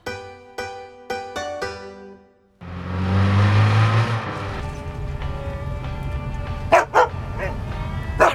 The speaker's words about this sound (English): What have I told you about barking in the jeep? Sit down. Sit.